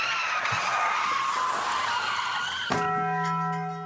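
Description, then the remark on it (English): A car's tires screech loudly for a few seconds, then a sudden sharp crash hits as the car crashes through a Taco Bell restaurant's front doors and ends up in the lobby, followed by a sustained metallic ringing tone as the impact settles. “accidentally crashed through a Taco Bell store's front doors and ended up in the lobby”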